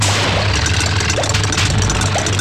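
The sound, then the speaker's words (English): A loud, steady roar of a Navy Super Hornet jet fighter's engine, demonstrated by Brendan Nelson, fills the whole clip, a broad rushing noise over a deep droning rumble, with no voices and little change in level. “Brendan Nelson demonstrates the Navy's new fleet of Super Hornet jet fighters.”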